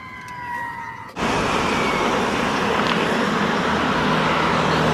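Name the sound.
emergency vehicle siren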